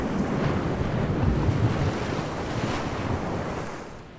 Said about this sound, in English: It was the dead of night, foggy cold air and the sound of water echoed across the sea. A dark shadow appeared over the moon's reflection on the gloomy waters. A large merchant ship crashed through the waves.